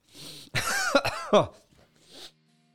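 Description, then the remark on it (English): A person has a short coughing fit: a breathy lead-in, then a few harsh, rough coughs in quick succession, ending with a strained throat clearing and a raspy breath, with no talking. “Had trouble breathing there for a second.”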